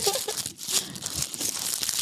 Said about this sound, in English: I kind of like this. It's the nice crinkling of a raw paper, a black raw paper.